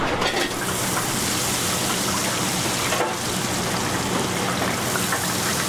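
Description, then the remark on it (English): Coated Alaskan pollock pieces sizzle in hot oil as they fry at the first Rubio's restaurant in California: a dense, steady crackling hiss with tiny pops scattered through it, holding an even loudness from start to finish with no voices. “I'm gonna fry it now with a couple pieces of pollock.”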